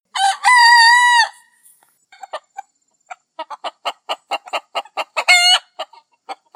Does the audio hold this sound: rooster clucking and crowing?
yes